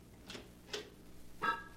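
The door of room 14 in a small, dingy hotel is opened quietly: a few soft clicks of the latch and handle, followed by a short squeaky creak, with no voices.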